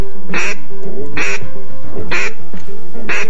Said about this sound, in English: Gadwall.